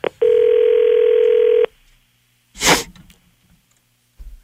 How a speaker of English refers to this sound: So he says that they said after 8:30 they would accept our phone call. Let's see if we can get them here. Trying to call CJOY radio station in Guelph, Ontario.